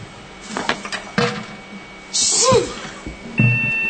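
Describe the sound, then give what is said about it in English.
A single loud sneeze, a sharp hissing burst with a brief voiced cry, preceded by a few soft clicks and knocks, with a short low thump just afterward. “Gesundheit,”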